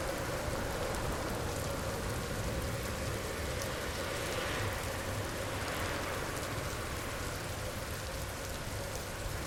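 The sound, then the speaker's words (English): A steady downpour pours onto a wet street, a dense, continuous hiss of drops splashing on pavement where big puddles are forming, with no voices and no breaks for the whole stretch. “It means we all have to get close and hope that the drivers passing by will slow down and not splash us with the big puddles that are forming right next to us.”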